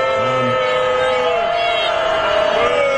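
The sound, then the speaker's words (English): A crowd at the annual congressional baseball game in Washington greets Joe Biden, mixing scattered boos with clapping, a steady, loud wash of voices and applause that holds for the whole moment, with a drawn-out low vocal tone running underneath. “They're mostly clapping.”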